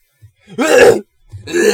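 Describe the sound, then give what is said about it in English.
A voice imitates throat clearing: two rough, gravelly bursts, the first around half a second long, then a short pause and a second rasping burst. “He kept clearing his throat every 3 seconds.”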